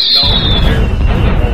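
Loud fireworks boom and rumble continuously, with a high whistling tone sliding downward at the start; a deep, crackling roar fills the whole moment, and no one speaks.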